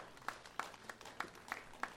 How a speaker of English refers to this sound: You guys give her a round of applause.